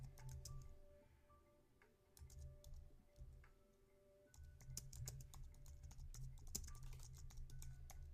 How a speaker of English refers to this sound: Sorry guys, I'm typing.